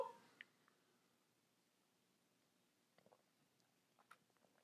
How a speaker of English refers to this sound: I guess we're going to go ahead and swallow this shot in the beginning.